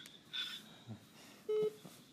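Two short electronic beeps from a phone as someone tries to call, on a quiet background: first a thin, high-pitched chirp, then a lower, louder tone about a second later. No one speaks.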